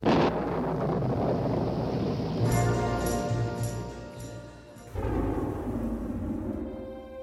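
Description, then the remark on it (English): A deep, continuous rumble of thunder at the very beginning of a song rolls through the whole stretch, heavy in the low end, briefly easing before a fresh swell of rumbling near the end. No voices are heard. “We even get the same thunder in the very beginning of the song,”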